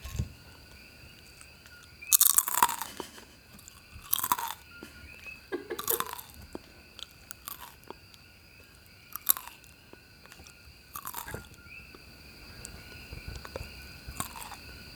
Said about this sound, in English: This is also going to double as a chip-eating ASMR.